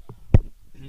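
A single heavy, dull thump of a microphone knocking against someone's shins, low and boomy, with a short rattle after it and faint murmuring voices before and after.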